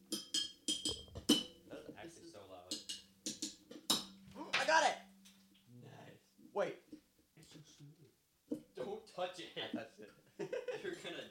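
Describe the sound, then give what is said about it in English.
Cups clink and knock together in a few sharp, bright taps as they are gathered up, heard under people talking and chuckling. “This is, there's some cups over here I'm going to grab.”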